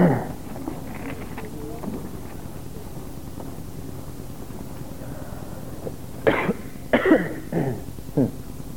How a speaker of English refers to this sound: Really hard to cough with a microphone on.